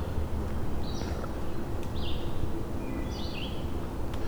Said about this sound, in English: You might find wood thrush back here, which they have a couple sets of territories. I'm hearing a couple singing right now.